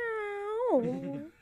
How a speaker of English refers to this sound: Did you hear that? Was the phone close enough? No, I heard that. Sounds like a cat to me.